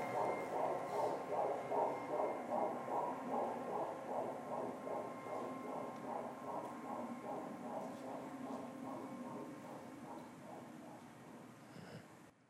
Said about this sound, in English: The silence, which had been deafening for so long, was about to end with the sound of a heartbeat.